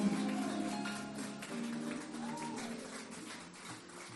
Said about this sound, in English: Would you mind clapping unto the Lord one more time?